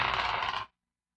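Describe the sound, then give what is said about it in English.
Dice clatter and rattle across a hard tabletop in one continuous burst lasting under a second, then stop abruptly, leaving silence. “I'm going to make this a three roll. Really? You're putting out flames at the same time. Come on, Jack's dice.”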